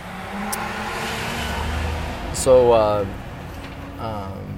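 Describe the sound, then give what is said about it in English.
A truck drives past, a steady low engine drone swelling and fading across a few seconds, while a person speaks briefly over the noise. “Truck's going to drive by here in a moment.”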